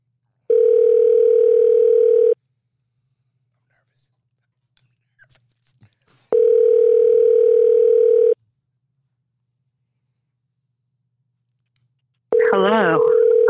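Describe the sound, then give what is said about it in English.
Two long, steady ringback tones of about two seconds each sound on an outgoing phone call, separated by several seconds of near silence, before a voice answers at the end. “Call the phone.”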